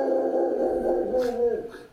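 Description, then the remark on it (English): A dog named Big Dog gives a drawn-out, wavering vocal sound lasting about two seconds, fairly loud and steady, with a couple of short breathy bursts near the end. “That's Big Dog. It's Big Dog.”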